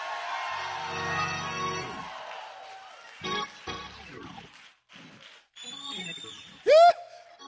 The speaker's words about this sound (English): Open up your mouth and give God a scream in this place.